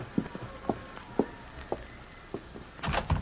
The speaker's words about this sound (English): And don't open that door so wide, you'll blow the lamp out.